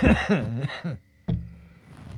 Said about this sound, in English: Oh, you're not doing a coughing fit again. You are a coughing fit.